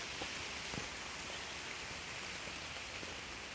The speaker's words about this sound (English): I don't know if it's actually raining or if the wind's just knocking the water out of the leaves. I think it's the latter.